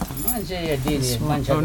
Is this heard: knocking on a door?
no